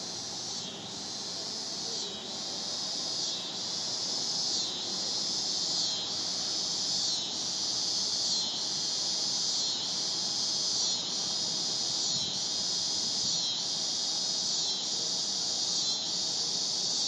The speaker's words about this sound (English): I want you to hear the cicadas.